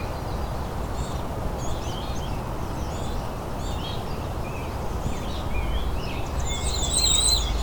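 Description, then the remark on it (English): Faint, very high-pitched, fairly short warbling song from a bay-breasted warbler in short bursts, mixed with other bird calls over a steady low rumble of outdoor background noise. “I've got a singing bay-breasted warbler in front of me, but it's so quiet compared to everything else.”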